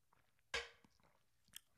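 Someone takes a sip from a can of LaCroix sparkling water: a sudden sharp fizzy burst that fades quickly, then a few soft mouth and swallowing noises. Nobody speaks.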